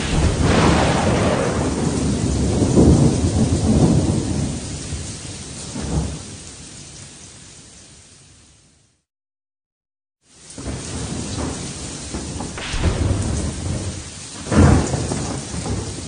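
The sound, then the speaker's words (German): A thunderstorm in the jungle with steady rain hissing throughout and deep rumbling thunder rolling in and out, broken by a brief silent gap before the storm resumes with another loud crack of thunder. “Sie wissen ja, während des Donnerns unterhält es sich schlecht.”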